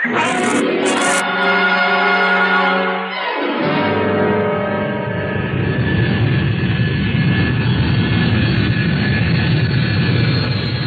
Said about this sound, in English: Well, there it goes. Bye-bye, Rodney. I had to see that plane in the sky before I'd leave.